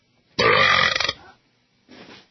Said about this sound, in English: I said belch.